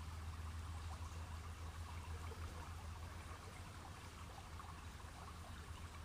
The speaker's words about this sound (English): I want you to just imagine that you're in the woods and you've come across this beautiful river. And you're just walking along this path, along this beautiful river. You can hear the water.